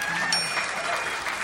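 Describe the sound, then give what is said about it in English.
A crowd applauds the band with steady, dense clapping that fills the whole stretch at an even loudness, bright and hissy, with a faint high ringing tone threading through it. “Could you give the guys in the band a nice round of applause?”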